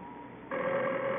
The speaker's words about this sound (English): Harry, the phone. I know it's the phone.